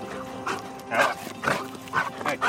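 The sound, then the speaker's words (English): A search and rescue detection dog gives a quick run of short, high-pitched barks and whines, about five bursts in a couple of seconds, over a steady low background hum. “Around the country, FEMA has about 280 certified detection dogs trained to find people in disasters.”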